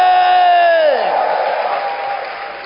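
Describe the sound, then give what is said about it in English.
A church audience stands and erupts in loud cheering and clapping to give the Lord a shout, opening with a long, sustained shout that slides down in pitch before dissolving into a steady roar of crowd noise. “I want you to stand to your feet, clap your hands, and give the Lord a shout!”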